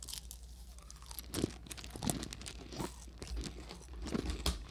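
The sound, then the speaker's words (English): Two people chewing handfuls of a crunchy snack containing Skittles deliberately loudly, with repeated crisp bites and crackles in an irregular rhythm, fairly loud and up front, with no talking. “Chew really loud because he likes it when we do that. Like make a smacking noise.”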